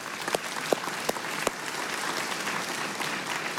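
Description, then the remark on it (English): An audience breaks into steady, dense applause, with a few sharp, distinct claps standing out near the start before blending into a continuous wash of clapping. No one speaks. “You can clap for that.”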